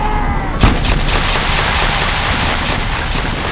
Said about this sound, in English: They tear off the old mags and slam home new ones, and gun 36 rat-a-tat-tats back to life.